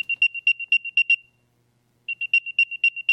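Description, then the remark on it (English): An Apple AirTag locator beeping: a rapid run of high, clear electronic chirps, a pause of about a second, then the same chirping pattern again, fairly loud with no one talking. “Now, that's a beep from an Apple AirTag, and Apple AirTags are meant to help you effortlessly find your keys or track your luggage.”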